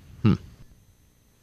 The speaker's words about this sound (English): Frogs in the wild, one of the most amazing things in Australia, according to these scientists, and they are really hoping this album will do great.